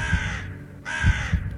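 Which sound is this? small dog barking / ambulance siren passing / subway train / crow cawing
crow cawing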